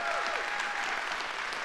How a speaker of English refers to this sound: Would you give the Lord a hand clap for that?